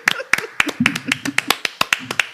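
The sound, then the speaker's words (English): Hands clap in a steady, quick rhythm, roughly a dozen sharp, crisp claps over a couple of seconds, with a faint low murmur of voices underneath at times. “So let's put your hands together and donate a kidney, because a hand is a much harder thing to give, and you'll like need them for the clapping, you know?”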